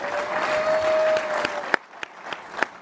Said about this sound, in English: By the way, give yourself a round of applause, everybody. You've been absolutely wonderful.